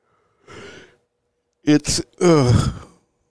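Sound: person yawning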